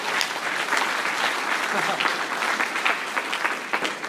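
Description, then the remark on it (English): An audience applauds the King, Jesus, a dense crackle of many hands clapping at an even loudness for several seconds, with faint voices mixed underneath. “Come, let's just applaud the King.”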